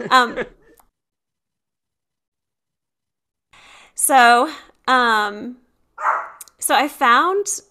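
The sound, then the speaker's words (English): A person imitates a dog barking with a string of loud, voiced yelps in quick succession, after a short sound at the start and a few seconds of silence. “she went from snorting to barking.”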